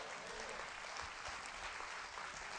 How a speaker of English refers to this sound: Somebody clap.